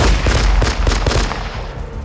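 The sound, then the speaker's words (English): A rapid burst of loud gunshots as Clyde fires during a prison breakout in fog, about eight sharp cracks in quick, steady succession, each with a booming low thump, tapering off into a rumbling echo. No voices. “Clyde fires again.”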